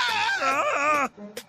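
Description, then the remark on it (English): Patrick Mahomes screams once, a loud, strained cry that wavers in pitch for about a second before cutting off, followed by a brief, quieter trailing sound. “If you had to tell me, how does Patrick Mahomes scream?”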